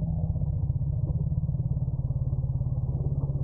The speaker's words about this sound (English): That's how African elephants say beware of bees in elephantese language.